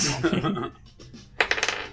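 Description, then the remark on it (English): Dice clatter across a hard tabletop during a game, a sharp rattle of quick clicks that bursts out, then tapers off in a few bouncing taps, with a brief murmur of voice before it. “Yeah, let me make I a mean, roll. You gave me a dice.”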